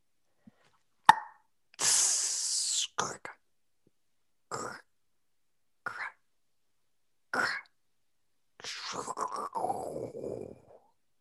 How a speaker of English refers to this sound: That dome is the only thing between you and the vacuum of space. You hear a soft pop and a hiss.